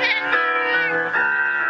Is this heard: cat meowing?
yes